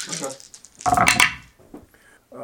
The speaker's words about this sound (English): This is not a lot, so those four black dice rolled nothing.